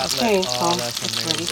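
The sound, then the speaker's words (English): A floured beef cutlet sizzles in a hot pan, a steady, loud crackling hiss that runs the whole time while a voice sounds briefly over it. “Fry that bad boy right up.”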